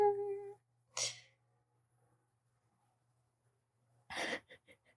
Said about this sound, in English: Oh, it's annoying when people say bless you after you sneeze.